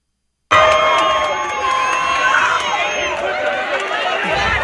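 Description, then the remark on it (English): A loud, sustained roar of a cheering crowd, with many voices shouting and whooping together in a dense, steady wash of noise that starts abruptly and holds throughout, as a man cheers the crowd on, in the original audio of raw footage. “He's cheering the crowd. The crowd's going.”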